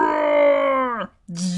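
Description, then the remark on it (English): A voice imitates the roar of a Wampa, an angry snow creature on the snowy ice planet Hoth: a loud, sustained moaning howl that slowly drops in pitch and cuts off, then a brief pause and a shorter, rougher burst. “An angry snow creature called a Wampa attacks.”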